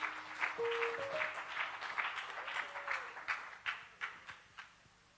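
A seated crowd claps their hands during a sermon in a dense wash of applause that thins out toward the end into scattered, separate claps. A few brief held tones sound faintly underneath at the start.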